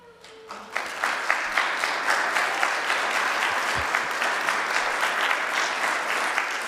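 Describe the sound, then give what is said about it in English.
An audience bursts into sustained applause welcoming newcomers, many hands clapping in a dense, steady wash that holds at an even loudness for several seconds, with no one speaking over it. “If you are a newcomer today and would feel comfortable doing so, we would love to invite you to just raise your hand so we can welcome you with applause.”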